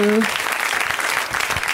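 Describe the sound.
A round of applause from a crowd at a comedy show, a dense, steady wash of clapping that holds at an even level throughout, with a brief voice tailing off at the very start.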